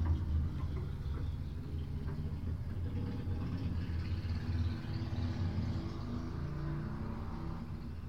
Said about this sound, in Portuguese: Ah! Motas, o meu género favorito de carros, que fazem muito barulho.